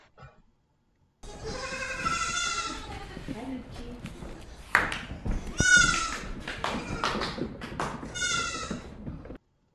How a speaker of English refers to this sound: I'm trying to think of what we call that. Baying? I don't think that's baying. Baaing, neighing. What are goat noises called? Whatever.